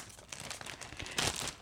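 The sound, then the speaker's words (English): A chip bag crinkles and rustles as it is opened by stabbing it with a pencil, a burst of crisp plastic crackling that swells to a louder tearing crunch near the end. “Okay, now let me just open it. 3, 2, 1. You stabbed it with a pencil?”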